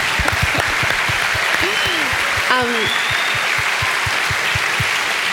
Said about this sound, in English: Yeah, let's clap. Clapping's good.